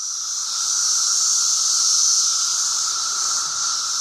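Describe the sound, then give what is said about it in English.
A dense chorus of Brood X cicadas, recorded during their 2004 emergence from the ground, fills the air with loud, shrill, high-pitched buzzing that holds steady and unbroken throughout, with no voices present. “It's when the cicadas called Brood X emerge from the ground and chirp and make noise for about a month.”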